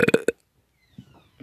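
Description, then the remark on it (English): A short, loud, throaty burp breaks out in a few quick voiced pulses, then trails off into faint low rustling and near silence. “Oh, sorry, I'm gonna burp.”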